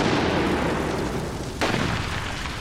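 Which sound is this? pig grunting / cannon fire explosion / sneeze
cannon fire explosion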